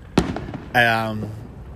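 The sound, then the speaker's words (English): A single sharp gunshot crack rings out outside, followed half a second later by a short voiced sound from someone. “sorry, I used the gunshots.”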